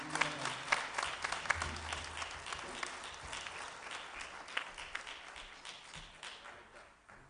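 A church audience applauds together to welcome a preacher, a dense wash of many hands clapping at a steady, moderate level that gradually thins and fades toward the end, with no one speaking.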